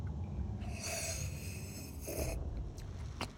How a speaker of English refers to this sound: Give me a couple test sips from your whiskey into the mic.